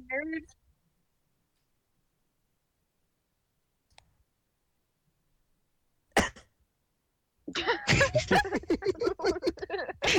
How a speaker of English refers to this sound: The awkward silence cough trademark.